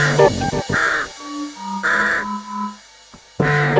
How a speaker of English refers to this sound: The squawking is there, this one's called The Nest.